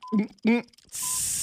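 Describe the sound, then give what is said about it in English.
A coffee maker brewing: two short vocal sounds, then a steady, fairly loud steamy hiss that runs to the end. “Coffee maker. Yes.”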